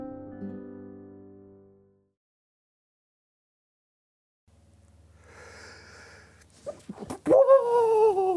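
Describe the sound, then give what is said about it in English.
A single loud sneeze into a microphone: a few quiet, wheezy breaths build up, then a sharp burst of air breaks into a strong, voiced cry that rings out at the end. “And that's the first time you've sneezed on mic.”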